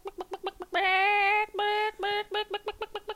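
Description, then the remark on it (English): A person imitates a chicken in a chicken impression contest, starting with quick rhythmic clucks, breaking into drawn-out squawking calls in the middle, then returning to a fast run of clucks. Loud, with no talking. “And they had some person, I don't know, what do you call, in a mascot costume, dressed like a chicken, emceeing it, and people would come up there and give their chicken impressions.”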